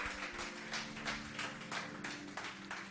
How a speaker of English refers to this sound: Give Jesus a mighty hand clap, my friends.